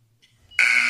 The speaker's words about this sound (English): People will be speaking for 5 minutes. If they go over 5 minutes, they get buzzed like a basketball buzzer. Can you demonstrate the buzzer?